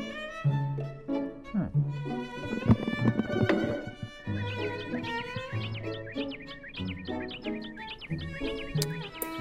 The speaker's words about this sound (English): That hawk sounding off.